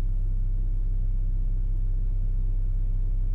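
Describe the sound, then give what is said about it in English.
Steady low-frequency rumble inside a moving car, a constant droning road and engine hum with no voices, filling the whole stretch at an even level. “Okay, so we are driving around”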